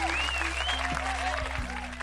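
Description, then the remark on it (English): A steady burst of crowd applause, dense continuous clapping lasting about two seconds at an even level, with faint whistling tones gliding over it. “Applause, you know what I mean?”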